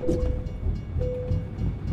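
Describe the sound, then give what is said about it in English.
In a video game, a train rumbles past a railroad crossing, its low heavy roar steady throughout, while a high bell-like crossing signal sounds twice in long sustained pulses as the crossing gates drop. “Once the train is registered to be coming through, they'll start dropping the gates.”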